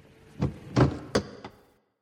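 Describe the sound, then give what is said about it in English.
The heavy cabin door of a 707 aircraft stopped at a jetway opens to bright winter sunlight with a sequence of four solid mechanical clunks and thuds over about a second, fairly loud, then quiet. “The cabin door opened to bright winter sunlight.”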